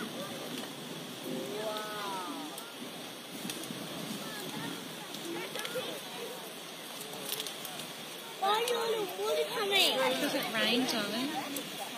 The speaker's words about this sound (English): Up in Tamworth, there were crowds that crammed themselves onto a bridge for over an hour waiting for the Peel River to start flowing again.